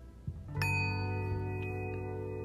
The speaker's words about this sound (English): I will keep hitting the bell as great as I feel tonight.